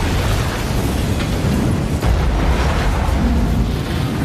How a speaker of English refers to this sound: And if you're watching the film and you look at the timestamp, this explosion happens at 33 minutes and 3 seconds.